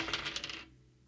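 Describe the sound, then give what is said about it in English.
Dice are shaken quickly in a cup or hand and rolled, a dense run of bright clicking taps, then cut off and leave near silence. No one speaks. “So that is a re-rake and reshake. Come on, Dice.”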